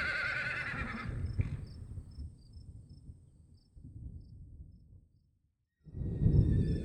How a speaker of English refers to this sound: A moment later, the wagon jerked to an abrupt stop. The horses whinnied and snorted in response to the pull on the reins.